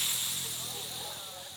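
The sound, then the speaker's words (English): A preacher telling a story imitates a snake's hiss: one long, steady breathy hissing sound lasting over a second, bright and airy, fading slightly toward the end. “And that snake says,”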